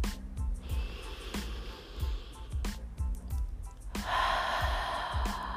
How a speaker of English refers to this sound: Whatever you're doing, just breathe. Slow, deep breaths.